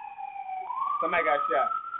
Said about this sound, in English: Somebody got shot. R.I.P. R.I.P. If somebody died, or God bless whoever in that ambulance, or they whoever they going to, I hope they make it if they is in there.